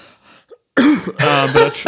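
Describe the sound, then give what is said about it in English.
A long, loud cough right up against the microphone, several harsh, raspy bursts running together after a brief quiet moment, with a throaty, voiced quality near the end. “Big cough.”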